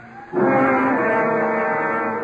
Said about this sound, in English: Then to the whispered, muffled sounds of the night and the river is added the furied lament of the siren and the attendance of the dead and the dying in there.